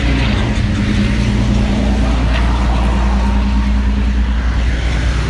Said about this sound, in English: Lorry.